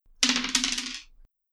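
A brief clatter of dice tumbling and rattling across a hard tabletop for about a second before settling, with no one speaking, as a player rolls dice in a tabletop game, the roll coming up 11.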